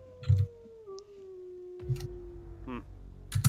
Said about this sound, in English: You hear a faint howl, and howls.